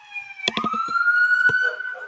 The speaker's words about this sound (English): Sirens are coming out now.